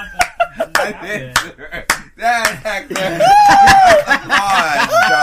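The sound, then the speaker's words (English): A few sharp, loud hand claps, added as an applause sound effect, pop out irregularly, mixed with chuckling laughter and voiced talk that grows busier and louder toward the end. “I thought you just added applause for that.”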